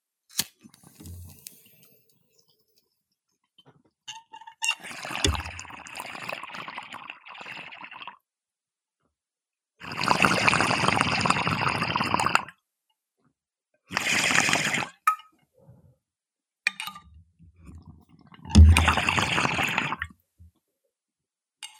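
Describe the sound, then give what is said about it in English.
Gurgling water bubbles in several separate bursts of a few seconds each, with quiet pauses and small clicks between them, like repeated pulls through a water pipe, as someone smokes weed of the wedding cake strain. No one speaks. “Let's smoke this weed, okay?”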